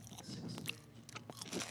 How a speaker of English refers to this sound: What, let's see, is there a difference between me chewing on a piece of pizza and me chewing on a garlic knot? Ooh. This is a garlic knot. Can you hear the difference? Can you hear the difference?